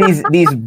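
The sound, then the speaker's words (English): A person briefly mimics chirping birds with their voice, a quick run of loud, warbling chirps lasting under a second. “These birds are like chirping.”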